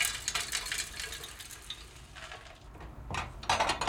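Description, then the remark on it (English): A small grinder resembling an old-fashioned coffee grinder rumbles steadily while a sandwich bag's worth of clumpy soil from a soil sample is slowly poured in, rattling and crunching through it, with gritty bursts that swell and fade, loudest near the end. No voices. “Switch on what looks kind of like an old-fashioned coffee grinder and slowly pour in a sandwich bag's worth of clumpy soil.”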